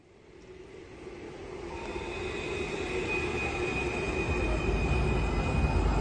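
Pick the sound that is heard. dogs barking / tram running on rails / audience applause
tram running on rails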